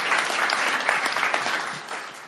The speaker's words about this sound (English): Can we clap again?